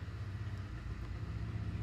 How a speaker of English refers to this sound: Sorry, I have a neighbor who also likes his motorcycles.